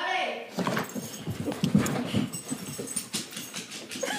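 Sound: dog sniffing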